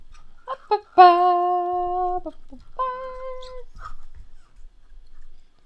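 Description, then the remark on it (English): A squeaky toy being chewed: two quick squeaks, then a long, steady, high squeal, a pause, and a shorter drawn-out squeak, fairly loud with no talking. “I kind of really want to know if you can hear that toy squeaking.”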